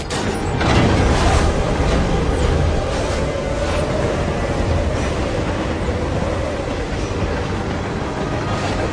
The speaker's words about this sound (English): this train would have been going wacky shack from either side. It's like a steaming blizzard.